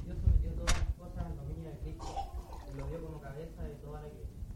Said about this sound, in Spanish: la verdad, voy a tomar agüita por mientras.